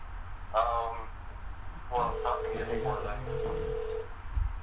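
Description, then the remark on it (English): A phone line rings out on an outgoing call, a steady electronic ringback tone lasting a couple of seconds, heard faintly alongside muffled voices talking. “Can you hear ringing?”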